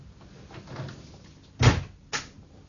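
A door shuts with a solid thud, followed half a second later by a sharper knock like a lock being turned, against a quiet background.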